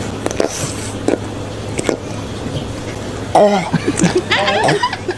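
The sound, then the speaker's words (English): A pufferfish munching a carrot: a few sharp, crisp crunches spaced about a second apart, fairly quiet, followed by a burst of chuckling. “That was the puffer fish. Munching a carrot”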